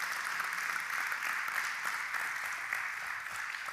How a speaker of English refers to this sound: Like if you love God in this place today, would you give Jesus a hand clap of praise? Come on, would you express it to him today?